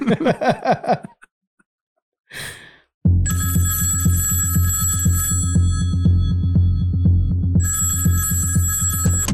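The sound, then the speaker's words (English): A telephone rings loudly, a continuous trilling bell that keeps going after a few short opening chirps and a brief rushing noise, with no voices. “You know, this is like if Rogan was having Elon Musk on again and he takes a fake phone call.”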